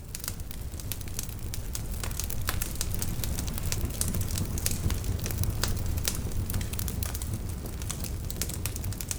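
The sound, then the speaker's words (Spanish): A ceremonial fire at an offering ceremony on the eve of Kamlajuzkawok crackles steadily with frequent sharp pops and snaps over a low, constant roar of burning, with no voices present. “En esta ceremonia, en la que están presentes agua, fuego, tierra y viento, se hace la entrega de los bastones de mando, que previamente han sido purificados por el fuego y cargados de energía.”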